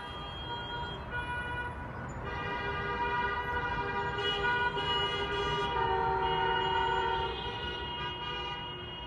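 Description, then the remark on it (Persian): Congested street traffic deliberately created in front of Dey Hospital, with many car horns blaring together in a loud, continuous overlapping chorus that holds steady for the whole stretch, with no talking. “ایجاد ترافیک مقابل بیمارستان دی.”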